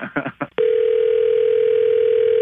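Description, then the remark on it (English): A brief muffled burst of voice gives way to a loud, steady telephone line tone that holds unbroken as a call to a cell phone goes through, clear. “All right, let's call her back on her cell phone.”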